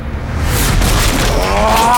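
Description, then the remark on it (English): The door of a house smashes open as Cookie breaks through it, a heavy, booming crash, a loud, dense burst of noise that rumbles on for about two seconds while a thin, rising wail creeps in near the end. “Cookie smashes through the door.”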